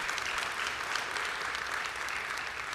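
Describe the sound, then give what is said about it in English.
Steady, sustained applause from an audience giving the Lord a round of applause, a dense wash of many hands clapping at an even level throughout, with no voices standing out above it. “Somebody give the Lord a big round of applause here today.”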